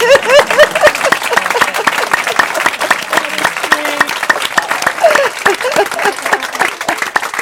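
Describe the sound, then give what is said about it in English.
A room full of people at a Buddhist gathering breaks into sustained applause, dense overlapping claps at steady volume throughout, with faint voices and a few cheers mixed into the clapping. “We never applaud. But today, we will.”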